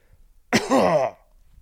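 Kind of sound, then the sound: human body sound, throat clearing cough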